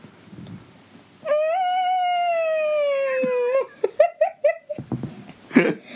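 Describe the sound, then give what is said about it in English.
A person voices a long, drawn-out moaning howl imitating a whale call, followed by a quick run of short squeaky chirps and a burst of laughter. “Can you do your best whale voice impersonation?”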